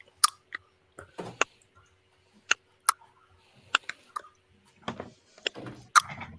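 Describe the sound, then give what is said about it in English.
Sharp, hollow tongue clicks against the palate, about a dozen of them at an irregular pace, some louder and crisper than others, with faint mouth sounds between and no talking. “Just like clicking your tongue?”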